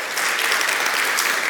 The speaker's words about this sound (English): God has done amazing work in their lives and in the life of this church through them. Yeah, let's clap for that.